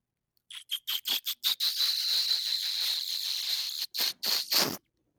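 A loud, exaggerated sip from a Lion Kugel Summer Shandy: a few quick sucking bursts, then a long hissy slurp, ending with several more sharp pulls before falling silent. No one speaks.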